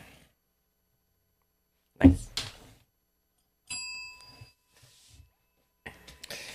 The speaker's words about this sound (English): Just ringing the bell.